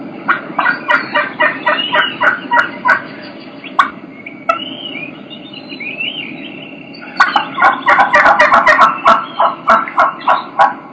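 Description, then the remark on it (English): Two turkey hens take turns with the same rhythmic run of yelps, one series higher and clearer, the other deeper and raspier, each a quick string of loud, close notes over faint background noise. “You can hear two hens doing the exact same vocalization, but you're going to be able to tell that they're two different hens.”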